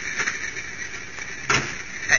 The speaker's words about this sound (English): What was that? That's the wind. The door's open and closing.